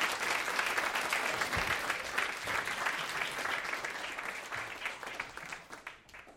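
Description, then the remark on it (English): Sustained applause from a show's audience for the guests, a dense, steady clatter of many hands clapping at full volume that holds for several seconds before tapering slightly at the end, with no talking over it. “Let's give a big round of applause for all the guests tonight here on the show.”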